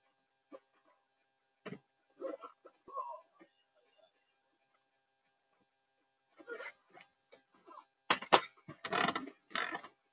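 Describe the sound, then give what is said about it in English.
A couple of sharp, loud sneezes burst out near the end, following a stretch of quiet with scattered soft vocal sounds and faint murmuring. “Bless you, man.”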